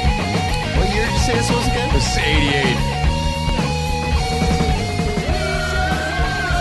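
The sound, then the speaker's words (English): The closing passage of a loud, dense heavy metal song: a singer screaming high and strained over pounding drums and distorted guitars, sustained without pause and no talking. “Dude, it's like he's being stabbed.”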